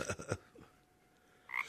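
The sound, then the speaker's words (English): A voice imitates a frog's croak: a quick, rippling burst of three throaty pulses, a short pause, then a second, higher croak, with no talking. “You're a frog.”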